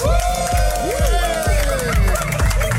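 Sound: festival crowd applause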